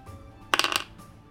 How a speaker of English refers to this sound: Come on. What is it? I rolled a one.